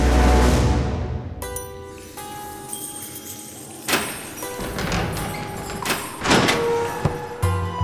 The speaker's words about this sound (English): The sound of the cell door swinging open startled Heinrich Bauer awake.